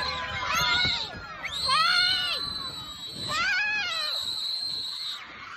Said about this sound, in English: The kids screaming. The kids screaming.